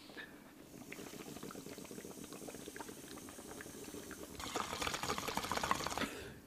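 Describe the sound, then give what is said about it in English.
Water bubbling in steady gurgling pops as someone draws through a bong, the bubbling growing louder and more vigorous toward the end before cutting off. No talking. “Oh shit, that pause was brought to you by Bong Rip.”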